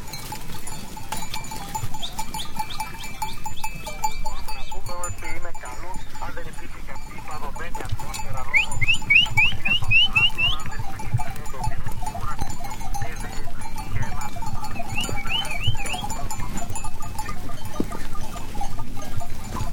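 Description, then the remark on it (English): A flock of sheep with bells in Greek Macedonia moves along with bells clanking irregularly, scattered bleats rising over a steady low shuffle of hooves, the whole scene busy and fairly loud throughout. “These and other sounds can be heard on his CD, ….”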